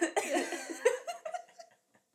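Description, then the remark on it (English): A fairly loud run of raspy coughs, several quick bursts in a row that trail off and fade out toward the end, with no talking. “It starts making me feel like I have to cough. Like, I'll build a cough for some reason.”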